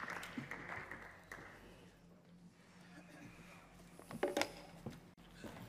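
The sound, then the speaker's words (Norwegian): An audience applauds to welcome a performer at an evening gathering, in a steady, dense patter of many hands at moderate loudness, with voices talking over it and a brief sharper burst of claps near the end. “Velkommen, gi han en herlig klapp her.”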